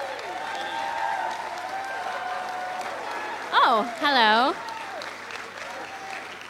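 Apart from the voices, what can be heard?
audience applause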